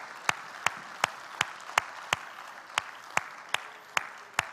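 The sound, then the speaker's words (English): An audience applauds to thank those among them who serve: a steady wash of many hands clapping, with a dozen or so sharper, louder claps standing out in a fairly even rhythm. No one speaks. “I want everyone else just to, let's give them a clap and let's thank them for all their service.”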